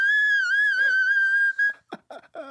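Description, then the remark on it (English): A singer attempting a high whistle-tone vocal run sounds like a tea kettle whistle, with a loud, steady, piercing tone held for about a second and a half, followed by a few short, breathy bursts. “It's more of a tea kettle than a whistle tone. That's exactly what it sounds like.”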